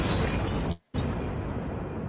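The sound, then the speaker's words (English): A loud, dense burst of noise fills the whole range, cuts to silence for a split second, then roars back and slowly fades, like a blast sound effect with crackling debris. “End of, where's my explosion?”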